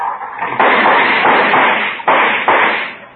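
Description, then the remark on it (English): A noisy car engine roars and sputters, with loud backfires cracking out at uneven intervals over a harsh, steady rumble. No one speaks. “My, my, what a noisy car.”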